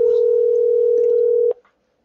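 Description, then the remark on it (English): A loud, steady telephone tone, as a phone call is placed to a caller, hums continuously for about a second and a half, then cuts off abruptly with a brief click, leaving silence. No one speaks. “Let's get them on the phone here and see what we got going on.”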